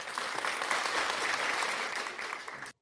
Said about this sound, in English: A clap for you, if I can.